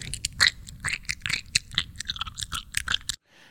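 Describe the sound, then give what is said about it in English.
Loud, wet chewing, a rapid series of squelching, crunchy bites and smacks running steadily for about three seconds before cutting off. “Sounds like some like a cow chewing cud is what that sounds that's like.”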